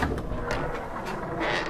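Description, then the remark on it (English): A heavy door of the Jedi Archives grinds open in a steady, low rumbling scrape that lasts under two seconds, with a few faint knocks and creaks over the fairly loud noise. “Man, these are heavy doors.”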